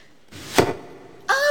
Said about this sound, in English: Oh, the arrow did come true. Your arrow is even better, bullseye. Fine shooting, my lord.